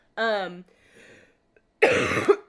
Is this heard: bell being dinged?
no